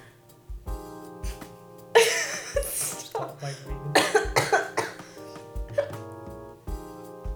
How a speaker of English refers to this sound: Holy hiccups. Where? One second. I have to stop my breathing.